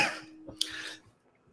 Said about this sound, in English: Sorry, a coughing fit over here.